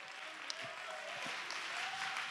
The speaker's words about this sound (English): Somebody clap your hands and give God the praise.